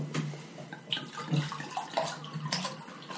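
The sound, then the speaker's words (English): A liquid pours steadily into a glass, a continuous splashing trickle with faint bubbly gurgles, fairly quiet, with no voices over it. “I don't know what effect a little pours. More. A little more.”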